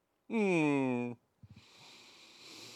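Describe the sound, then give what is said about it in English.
A sustained, tonal vocal whine gives way to a few quick clicks, then a drawn-out, breathy, moderately loud sniffle through the nose from someone with a cold. “Got a little sniffles there”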